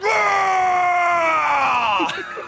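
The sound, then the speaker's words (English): A person voices a loud, sustained battle roar imitating a half-orc ranger, holding a strained, raspy tone for about two seconds as the pitch slowly sinks before it breaks off. “I just want to hear the chilling roar of a half-orc ranger.”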